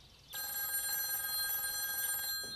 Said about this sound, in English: Excuse me just one moment while I make another quick phone call.